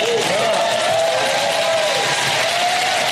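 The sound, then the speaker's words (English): An audience in Virginia applauds a speaker calling a proposed pipeline a reckless, racist ripoff, a dense, loud wash of clapping throughout with a sustained high whoop or whistle riding over it. “Oh yeah, clap again.”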